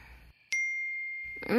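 A single bright electronic ding, a phone's text message alert at 2 a.m., rings out clearly and lingers in a smooth fading tone, with a voice just starting at the very end.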